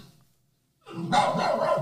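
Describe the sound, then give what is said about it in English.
One dog barks loudly after a brief near-silent pause, letting out a rough, rapid run of barks that carries on to the end. “This one's just one dog.”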